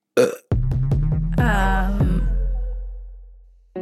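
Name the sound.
burp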